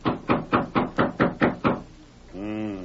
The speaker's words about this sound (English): Here's York's door. I'll knock to let him know we're here.